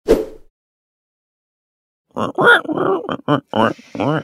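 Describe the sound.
A person imitates a pig: one short snorting grunt, a pause of silence, then a loud run of rapid nasal oinks and grunts in quick succession.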